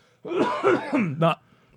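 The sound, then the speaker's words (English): A wet, phlegmy coughing fit after sipping a sugary coffee, about four harsh hacks in quick succession, ending in a throaty rasp, loud and with no talking over it. “Not that last phlegm.”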